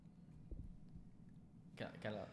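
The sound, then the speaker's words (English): A single sneeze bursts out near the end, a sharp two-part blast after a stretch of low background murmur, loud. “bless you”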